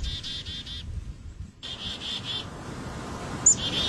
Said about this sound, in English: Okay. So first of all, we've got the black-capped chickadee.